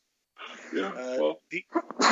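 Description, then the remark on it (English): A person sneezes: a drawn-out, voiced wind-up, a few sharp catches of breath, then an abrupt, forceful burst at the end. “Bless you. Bless you.”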